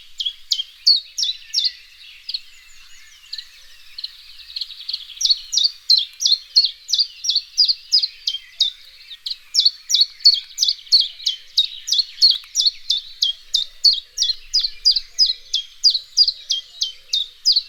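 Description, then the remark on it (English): A chiffchaff sings a long, steady run of bright alternating notes, each repeated in an even rhythm, with a short lull early on before it continues clearly with no other sounds. “one of them has a very distinctive and easy to recognise song, for it says its name over and over and over again, singing from the tops of tall trees.”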